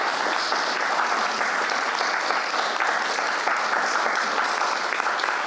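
An audience claps steadily for several seconds, a dense, even wash of many hands with no pauses or voices on top, applauding a piece called the reunion.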